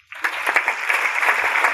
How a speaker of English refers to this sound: I think he deserves a hand clap.